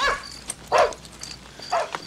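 A dog barks three times in short, irregular bursts, moderately loud, with no one talking and only a faint steady background hum between the barks.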